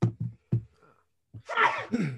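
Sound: sneeze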